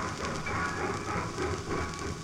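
Real train sounds played from a double 10-inch record: a train rolls along steadily, its low rumble and broad rushing noise punctuated by faint, rhythmic clatter of wheels on rails. No voices, just the continuous moving train.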